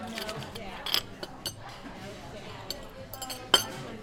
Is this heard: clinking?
yes